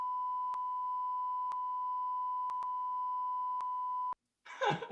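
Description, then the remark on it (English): A loud, steady censor bleep holds one high pitch for about four seconds, broken by faint clicks, then cuts off abruptly; after a short silence, a brief voice-like sound begins. “I think we're going to have to bleep some of that out for legal purposes.”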